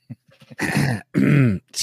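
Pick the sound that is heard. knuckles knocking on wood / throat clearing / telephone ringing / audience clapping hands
throat clearing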